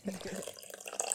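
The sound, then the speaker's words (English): Coffee pours into a cup, a brief steady trickle of liquid with a gurgling, splashing texture lasting about a second. “Let's start this show with our last first cup.”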